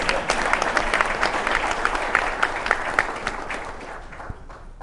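An audience claps steadily for an invited guest speaker, a dense wash of many hands that stays loud before gradually thinning out toward the end.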